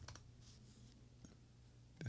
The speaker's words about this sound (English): That would be typing. That one? Yeah, I don't know why keys always make me sleepy. The typing of keys. Hearing people type on their keyboard. The ASMR like keys.